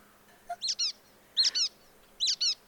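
A brown-headed nuthatch gives three quick bursts of squeaky, high-pitched calls, each a pair of sharp rubber-ducky squeaks, repeated at regular intervals, clear with no talking.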